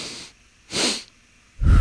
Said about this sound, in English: So I'm blowing on the microphone.